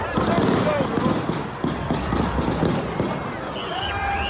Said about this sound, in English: I'm going to play a little audio here of when the shooting took place